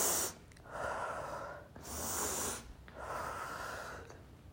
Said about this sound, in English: Number two, count to 100 a couple of times to slow your breath, right? To slow your breathing. Breathe in and out 10 times, deep breaths.